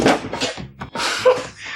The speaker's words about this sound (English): I'm sorry, I was just trying to get this door open. I don't seem to have a key. Yes, that's rather obvious.